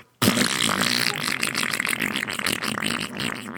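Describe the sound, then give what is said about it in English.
A loud, wet, sputtering diarrhea fart recorded in a bathroom, bursting in abruptly and bubbling and spluttering for over three seconds, with a raspy, gurgling texture and no talking. “No, that was diarrhea.”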